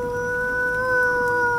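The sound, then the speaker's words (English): A voice imitating the howl of two fey dire wolves: one long, steady, sustained note held for over a second, fairly loud, with no talking around it. “You see these 2 fey dire wolves appear before your eyes. And they go...”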